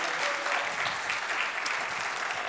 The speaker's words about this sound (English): Come on, give God one more great clap offering. Amen.